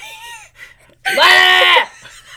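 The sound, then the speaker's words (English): A person loudly imitates a goat's bleat: one strained, quavering cry lasting under a second, preceded by a softer, brief vocal sound. “I'm a goat.”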